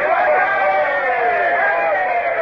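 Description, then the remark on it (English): A boat crew of men climbing up the side of a ship together roars a loud, sustained cheer, many voices blending into one steady shout that holds at full strength for a couple of seconds without pause. “Now, all up the side together and give a cheer.”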